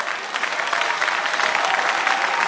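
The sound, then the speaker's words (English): An audience applauds and shouts together at someone's testimony in a steady, dense burst of clapping and cheering, loud and continuous for a couple of seconds with no single voice standing out. “Is that the way you are shouting at somebody's testimony?”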